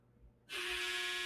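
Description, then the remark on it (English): After a brief near-silent pause, a harsh electric buzzer suddenly starts and holds steady, a loud raspy drone with a low hum underneath that continues to the end without any talking. “There's that buzzer. So if you heard it, that's what it was.”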